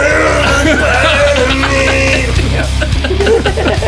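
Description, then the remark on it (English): A loud, strained voice screams continuously for a few seconds, imitating harsh rock vocals, with a gritty, raspy tone and no clear words. “you do everything stripped down with the piano, but then when it comes to the part, you just do the vocals the way the vocals are. Yeah. You just start screaming at people.”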